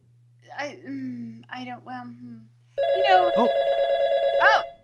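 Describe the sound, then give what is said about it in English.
A telephone starts ringing loudly with a steady electronic tone, about two seconds of continuous ring, after people speak; a voice carries on talking over the ringing. “Wow. We're getting a call.”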